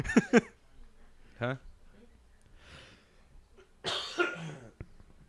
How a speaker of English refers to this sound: you've been coughing a lot